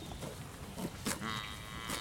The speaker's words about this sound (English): So you start smelling cow breath. There we go. Been waiting for one of those. The quietest herd of cows I've ever seen.